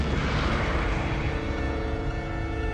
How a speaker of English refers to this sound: Matter-antimatter explosions appear to be ineffective, sir.